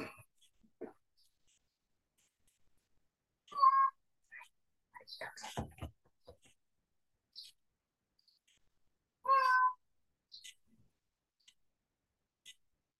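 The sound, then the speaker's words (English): A cat lets out two drawn-out, complaining meows several seconds apart, with soft clicks, rustling and faint breathy noises scattered in the quiet between them. “This very unhappy cat.”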